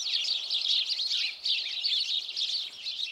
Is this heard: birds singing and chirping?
yes